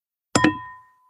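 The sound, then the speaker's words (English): Two quick bright clinks of crystal glasses striking each other in a toast, followed by a clear high ringing tone that slowly fades away. No voices. “Touch the mic. Clink. There you go. That works. Nice crystal glass you got there.”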